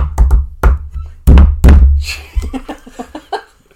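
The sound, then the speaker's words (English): A loud shave-and-a-haircut knock pattern on a solid surface: a quick run of raps, a pause, then two heavy thuds, followed by people laughing. “I go to that door and go...”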